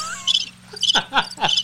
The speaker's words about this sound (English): there's crickets playing right now.